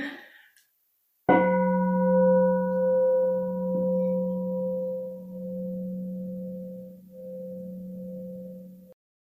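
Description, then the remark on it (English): A meditation bell is struck once to end a Dharma talk, then rings on with a deep, steady hum and shimmering higher overtones that slowly fade over several seconds. No one speaks. “We'll just ring this bell to end.”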